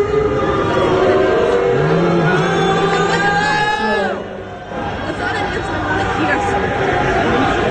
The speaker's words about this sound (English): The best part of that whole part of that booing interlude right there, the reason why you don't hear Henry saying anything is because he kind of just looks out at the crowd and shrugs.